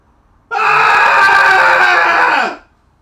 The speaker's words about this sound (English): So, everybody, happy Thursday. We're going to do Cathartic Scream together in a three count. Here we go. In 3, 2, 1.